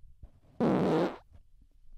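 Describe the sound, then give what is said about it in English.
A single loud fart, blamed on drinking seltzer water, lasts a little over half a second, a low, buzzy, rasping blast that starts abruptly and trails off, surrounded by quiet with no talking. “And that's another reason I'm going to have to quit the seltzer water or at least taper down a little bit, because I am getting the craziest farts, the craziest burps.”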